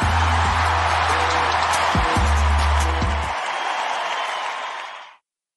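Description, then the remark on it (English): A dense, steady wash of crowd applause welcomes the start of an edition of the show Pollock and Thurston, holding at an even loudness for about five seconds, with a low tonal hum underneath for the first half, then fades out quickly. “That warm applause welcomes us into another edition of Pollock and Thurston here on Wednesday, December the 6th.”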